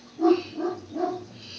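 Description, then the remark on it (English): A dog gives three quick, evenly spaced barks, not loud, with a short moment of quiet after the last one. “Or maybe my dog senses the...”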